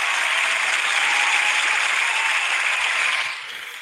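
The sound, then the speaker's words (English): A small group claps steadily for a few seconds, a dense patter of hands that fades slightly toward the end, with no voices over it. “The low budget clapping. I think it calls for it.”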